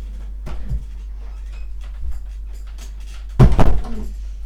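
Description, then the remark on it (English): A door swings and shuts with a solid thud near the end, after a couple of faint knocks and shuffles, over a steady low hum. “Can you shut the door all the way?”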